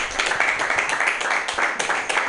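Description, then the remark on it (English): An audience at a comedy festival show claps steadily for Mutiny Radio, the festival's organizers, many hands forming a dense, bright patter of overlapping claps at an even, fairly loud level with no single beat standing out. “Hey, give it up for Mutiny Radio, putting the festival together, doing the whole thing.”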